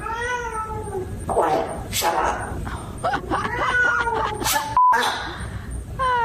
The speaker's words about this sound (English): Now, you're going to hear a voice that sounds like a woman. It's the parrot mimicking the woman's voice, but talking to the cat. Listen carefully to what happens when the cat's meowing.